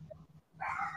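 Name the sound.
dog barking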